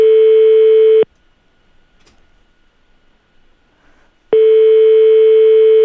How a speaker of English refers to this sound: Right, so let's see if this is going to ring now. It's ringing. Oh. Here we go. Because this is Tucker's Grill in Horny Town.